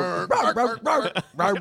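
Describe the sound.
A person imitates a dog barking, giving about five voiced woofs in a quick, slightly sing-song rhythm with brief gaps between them.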